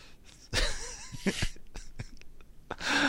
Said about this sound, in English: Thank God for kids playing in the background.